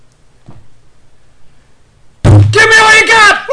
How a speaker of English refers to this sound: The extra thud on the table there as well.